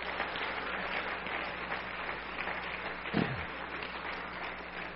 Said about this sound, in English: All of our other guests that are in the house, Lord bless you, and why don't the church give our guests a hand clap this morning?